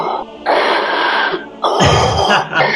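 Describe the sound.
A voice imitates heavy, muffled breathing through a raven's mask while running around in the heat: two long, loud breathy rasps, the second deeper and rougher, with a short gap between them.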